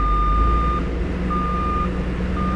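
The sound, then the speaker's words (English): A truck idles with a heavy low rumble while its reversing alarm beeps in long, steady tones, repeating about three times at an even pace, fairly loud. “On the other end of the spectrum, sounds of construction or truck traffic or airplanes or jet skis are not just annoying.”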